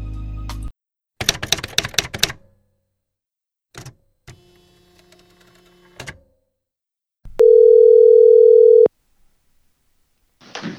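A steady, loud telephone dial tone holds for about a second and a half, preceded by clattering, clicking handset and keypad noises and a short mechanical whir, with no talking.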